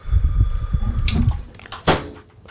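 Warm water sloshes and splashes in a tub, with a low churning rumble and two sharper splashes, the second one louder, and no one speaking.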